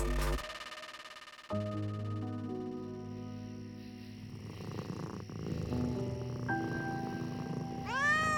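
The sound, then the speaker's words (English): A cat purrs steadily under eerie sustained tones, then lets out a single rising meow at the very end. No one speaks. “There's something undeniably spooky about a black cat.”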